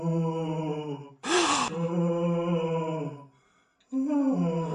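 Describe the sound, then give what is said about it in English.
An eerie, ghostly moaning at the Playboy Mansion: a long, steady low wail with a brief breathy rush near the start, a short silence, then the moan rising again. It sounds like a voice imitating a ghost. “Listen to this eerie moaning.”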